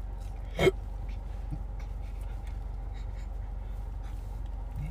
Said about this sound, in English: Little hiccup and burp combo there for you.